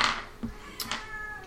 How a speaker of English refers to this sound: A cat. The cat is really pissed